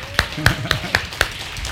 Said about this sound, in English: Yeah, clap. Yeah.